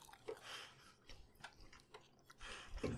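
Wet chewing of fries with irregular crunchy bites and smacking mouth sounds repeating over a few seconds, fairly quiet, with no talking.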